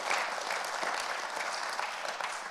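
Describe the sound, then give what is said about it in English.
A church audience gives Jesus a hand clap of praise, a steady wash of many hands clapping at even loudness for a couple of seconds with no voices standing out. “And I want to give Jesus a hand clap of praise right now because the Holy Spirit lives in us as believers today.”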